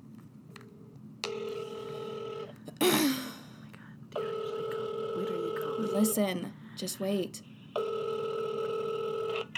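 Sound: telephone dialing and ringing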